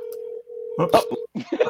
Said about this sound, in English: Oops. He's like, wait, he's calling me. Let's watch him answer the phone. He doesn't know what to do with the phone. It's ringing.